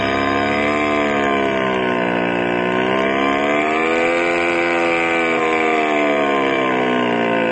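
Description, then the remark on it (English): A 75-horsepower hot rod engine revs loudly, its throaty roar holding steady, then swelling up and dropping back in pitch over several seconds, with no one speaking. “Wow, that's some engine, Gus.”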